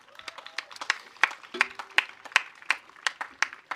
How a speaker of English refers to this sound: So a couple things. Can we do one round of applause for our tech guys and girls this morning?